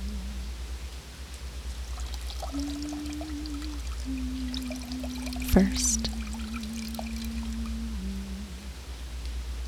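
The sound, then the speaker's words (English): Hands and sacred bathing scarves dipping into cold salt water, with soft sloshing and trickling throughout, one sharper splash near the middle, a steady low hum underneath and a brief spoken word. “they dip their hands, they dip their sacred scarves, these bathing scarves, in the salt water, and drenching in the cold salt water, they lay these scarves across”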